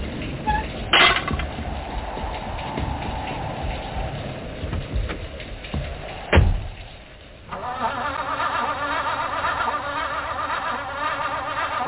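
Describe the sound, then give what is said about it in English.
A car engine cranks as the key is turned, with a steady grinding whir but never catches, preceded by a couple of sharp clunks, all under a constant hiss of rain. “Oh, no. The car won't start.”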